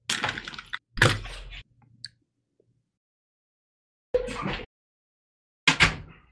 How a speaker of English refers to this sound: And hold on a second. Let me get the door.